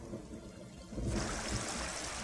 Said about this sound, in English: And rain. The deluge.